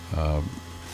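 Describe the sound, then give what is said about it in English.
A low, steady electrical hum runs throughout, faint but constant, with a brief voice-like tone rising over it near the start. “Yeah, there's a little hum going on, and we're trying to figure out what is that hum and where is it coming from.”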